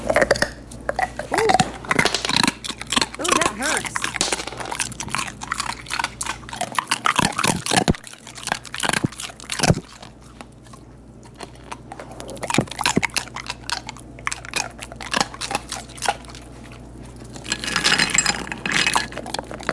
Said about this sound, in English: So to go a little further, I have for you now Harley, the dog, eating ice cubes. Here we go, Harley.